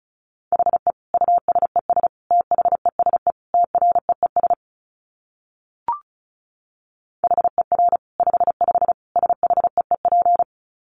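Rapid Morse code at 35 words per minute: a steady mid-pitched tone keyed into quick dots and dashes, sent in two bursts separated by a pause with a single brief click.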